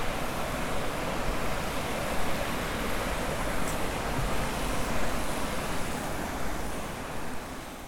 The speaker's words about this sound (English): I mean, the water, it's, like, music to my ears.